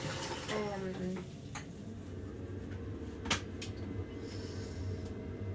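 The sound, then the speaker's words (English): A kettle is carefully handled and set down as it is put on, with a few light clinks and one sharper knock over a steady low hum, fairly quiet. “And yeah, we talked about so many different things, and I suppose this is something that I really have to talk about right now, as I go to put on the kettle very carefully with this recording device.”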